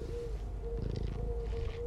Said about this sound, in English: You want to hear my cat purring?